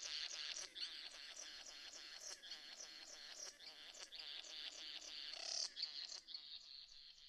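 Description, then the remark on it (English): A male satin bowerbird gives his courtship display call while dancing for a female: a continuous run of rapid, harsh buzzing and chattering notes. It stays fairly loud and steady for about seven seconds, with a sharper crackling burst near the end. “Which this is the sound that matches when the male is giving his dance to the female.”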